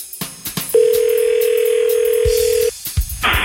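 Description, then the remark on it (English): A telephone being dialed to call the Big Bone Lick, a tri-state double drive-in: a few quick clicks, then a steady, unbroken dial tone humming for about two seconds before it cuts off into more clicking handset noises. “usually we like to call out on Friday mornings to our favorite tri-state double drive-in, the Big Bone Lick, and see what kind of movies they're offering.”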